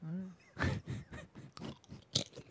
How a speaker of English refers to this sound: please do not crunch into the mic.